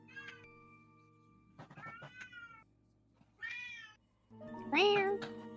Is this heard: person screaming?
no